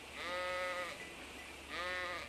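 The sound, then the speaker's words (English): Two wavering sheep bleats, the first long and the second starting near the end, each a buzzy, harmonic-rich call over a faint low background hum, with no talking. “Probably nothing making any sound except a few sheep maybe still awake.”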